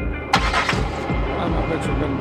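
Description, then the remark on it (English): A getaway car's engine turns over abruptly and settles into a loud rumble with steady low thumping pulses beneath a bright, noisy hiss, continuing without any talk. “We go outside, we get in the car, we start driving”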